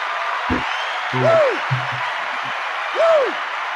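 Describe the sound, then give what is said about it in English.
An audience on a show claps steadily throughout, giving a round of applause as guests are brought in, a dense, even wash of applause, with a couple of short rising-and-falling whistle-like tones and faint muffled voice fragments underneath. “And let's bring them in, get to know them a little bit more, and give them a round of applause, folks.”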